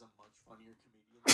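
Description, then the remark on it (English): Soft, halting voiced sounds build up, then one sharp, loud burst of a human sneeze lands abruptly at the very end. “Anyway, I was more interested in sneezing than like one of the most uncomfortable human sensations, rather than listen to them talk.”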